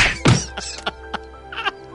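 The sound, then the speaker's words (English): A punch to the face: a heavy, punchy thwack lands near the start, a single impact with a deep thud, followed by a few softer, scattered knocks and rustles. “I punched that bully right in the face.”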